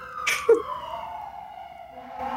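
An emergency vehicle siren passing outside on a busy street wails, its steady tone gradually sliding lower in pitch, with a brief noisy burst near the start and no talking.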